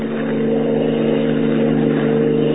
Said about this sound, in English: Planting himself in the middle of the only road leading from the Sudbury airport, Superman waits for Hans Holbein's car to come along. His keen hearing detects an approaching motor, and he stands at rigid attention, every rippling muscle tense.